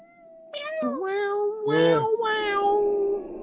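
Cats yowling in long, wavering, overlapping cries that rise and bend in pitch, loud and close, over a steady sustained tone, with no talking.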